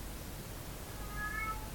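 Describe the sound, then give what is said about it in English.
A single short meow from Chester, a domestic cat, rises faintly from the background about halfway through, thin over a steady low hum, with no voices present. “Oh, you can hear Chester.”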